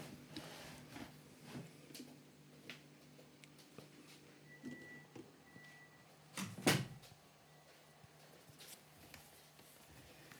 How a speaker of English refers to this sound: All right, hold on a sec. I was just going to shut the door. Okay. Hang on.